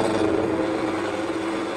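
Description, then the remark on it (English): Harley motorcycles doing donuts, burnouts and stunts at a canceled bikers' event in New Haven roar in a loud, continuous drone, a dense rumbling growl that holds steady throughout with no clear breaks and no voices. “I'm here to watch all these sickos do donuts on Harleys.”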